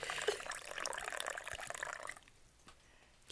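Coffee pours steadily into a cup, fairly loud, for about two seconds, then tapers off into a few quieter trickles and drips. No one speaks.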